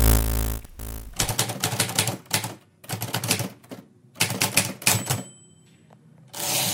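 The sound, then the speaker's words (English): Rapid bursts of mechanical keystrokes from an Erica typewriter clatter in quick rhythmic runs separated by brief pauses, with a faint bell ding and a carriage return sweep near the end. “You have accessed entry 424.JB0412, certificate number 37914, the Erica typewriter.”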